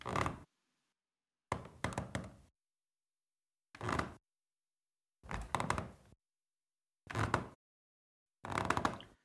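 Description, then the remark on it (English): Wooden stairs in a house creak under footsteps as someone goes up them: six short groaning creaks, each under a second, separated by silent gaps at a steady climbing pace, with no talking. “And that's the noise my stairs make every time I go up them.”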